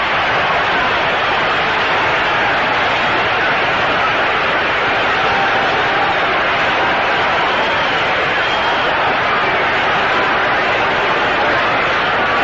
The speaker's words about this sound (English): Moten now is being cheered and applauded as he returns to the dugout, and listen to it.